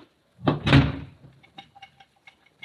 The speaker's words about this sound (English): The back door's wide open. I'll close it. Wait a minute, don't touch it. Don't touch that knob. Kick it shut.